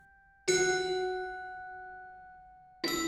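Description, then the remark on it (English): Bright, bell-like glockenspiel notes chime, layered into a piece of music to create a melody: one struck tone rings out and slowly fades for a couple of seconds before a second note strikes near the end, with no voices. “So I layered in some glockenspiel that creates a melody for this section.”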